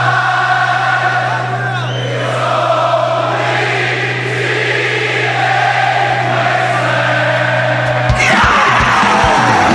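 A loud concert crowd yells and cheers in a sustained roar, with whoops rising over a steady low hum; the cheering swells briefly near the end.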